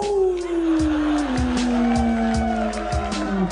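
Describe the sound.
Several voices howl together like a werewolf, one long sustained wail that slowly slides downward in pitch, with a few rhythmic thumps sounding underneath.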